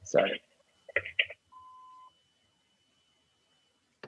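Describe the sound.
A short burst of muffled voice-like sound, then a single steady, mid-pitched answering machine beep lasting about half a second, followed by silence and a brief click at the end.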